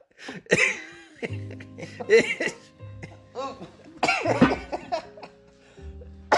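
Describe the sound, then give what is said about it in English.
A loud fit of high-pitched coughing, several sharp hacking bursts in an irregular sequence with short gaps, some strained and voiced. “Such a high-pitched cough, too.”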